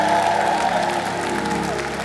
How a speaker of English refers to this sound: Can we give them a big round of applause? Excellent job today. Let's give our band musicians a big round of applause.